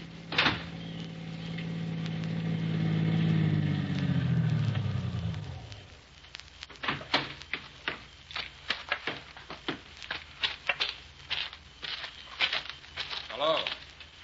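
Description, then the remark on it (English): A car that has turned in at the foot of a hill engine rumbles as it comes up the driveway and winds down as it pulls in, followed by a string of crisp crunching and clicking noises, like tires or footsteps on gravel. “A car down there at the foot of the hill just turned in your driveway.”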